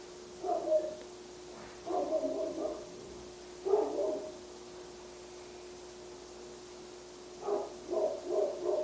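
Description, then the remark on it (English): A dog barks, several short clusters of barks separated by pauses, quiet and somewhat muffled over a steady low hum and background hiss. “Lovely dog ancestor chiming in.”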